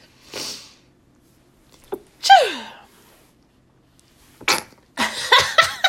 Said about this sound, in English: Wow, I got the sneezes today.